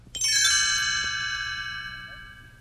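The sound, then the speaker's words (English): A bright, shimmering page-turn chime from a read-along storybook recording of Pete's Dragon rings out once with several high metallic tones struck together, then sustains and slowly fades, heard alone over a faint low hum. “You will know it is time to turn the page when you hear the chimes ring like this.”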